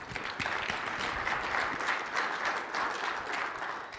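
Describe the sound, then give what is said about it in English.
Steady applause from an audience for the event's co-speakers, a dense wash of many hands clapping at a fairly even level for several seconds with no voices over it. “And just want to give an applause to all of our co-speakers today.”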